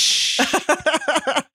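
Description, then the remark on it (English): A voice imitates a beer can opening with a steady, airy hiss lasting about a third of a second, followed by a quick run of short, rhythmic vocal bursts. “That was a good imitation.”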